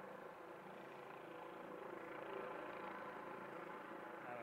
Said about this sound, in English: It's hard to take a picture, but helicopters above.